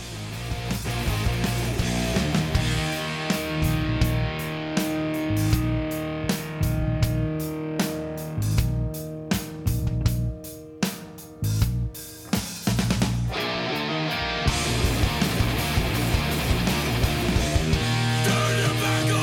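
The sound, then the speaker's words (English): A loud, distorted rock song plays continuously, with dense heavy guitars, pounding rhythmic drum hits and rough, screamed vocals, a brief thinner break near the middle before the full band crashes back in. “Vocals are a lot rougher on … as well. Yeah, it's a lot more screaming.”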